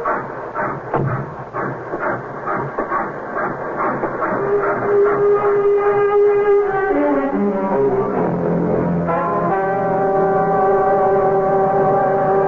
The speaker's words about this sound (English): Mopey! Mopey! This station is Mopey. Hey, thank you, the train's 5 minutes late. We'll make it up before she pulls into Manchester.